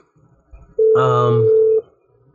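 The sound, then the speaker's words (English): A phone rings: one loud, steady electronic tone lasting about a second, briefly layered with a brighter buzzing chime, then cutting off into quiet background noise. “My phone's ringing.”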